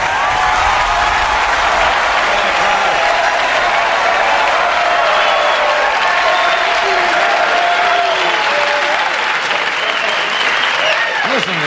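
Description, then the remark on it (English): A crowd applauds steadily and loudly for about twelve seconds, a dense wash of clapping with scattered shouts and whoops rising through it. “Listen to that. Jeez, that's really nice. It's a great crowd here.”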